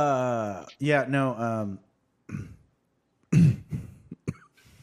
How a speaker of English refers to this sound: Yeah, all right, sorry, had to clear that out there. I got the COVID. I had to cough a little bit. So there it goes.